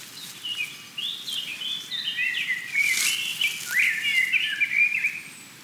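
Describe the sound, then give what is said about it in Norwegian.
Lively birdsong fills an outdoor space in the woods during a walk in very fine weather, with several birds chirping and trilling in overlapping, high-pitched phrases over a soft, steady background hush. No one speaks. “Det koselig med litt sånn fuglekvitter I bakgrunnen her.”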